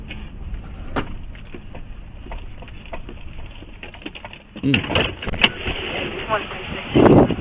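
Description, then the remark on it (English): A car rumbles and grows louder partway through, with sharp clicks and knocks like a door or handling noise, over muffled, indistinct voices and a steady low hiss. Police dashcam footage of a police officer stopping the car. “Police officer stopping a car.”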